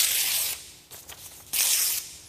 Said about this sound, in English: Y'all with me? You got to come to church today and saw your preacher tear paper like this. Blesses your heart, doesn't it?